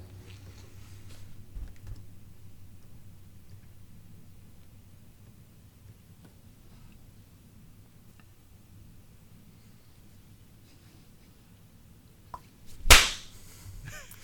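people clapping

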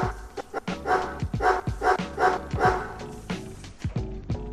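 dog barking

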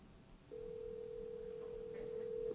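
phone call ringing tone

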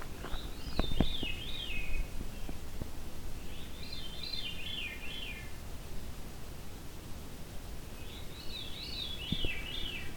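veery thrush song

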